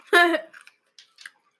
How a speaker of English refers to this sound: Stop chewing on a lollipop. No, it's not an ASMR channel.